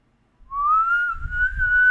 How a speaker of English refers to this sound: Do you know what I did learn how to that I never learned how until like a month ago? I learned how to whistle.